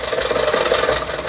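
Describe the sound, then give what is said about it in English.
An old car engine runs steadily in a scene of the radio show The Great Gildersleeve, a dense, rattling mechanical drone with a slight uneven chug, holding at a constant moderate loudness throughout, with no voices. The car is said to have been bought around the time Mr. Roosevelt was elected. “who did you buy this car from, Rochester?”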